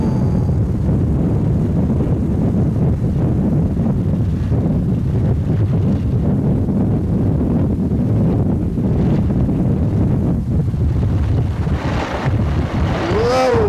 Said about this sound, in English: Bubbling water. I think this is water. It might be sulfur water. Not even drinking water. Where is all the air coming from? Is it being like created? Oh, there's air.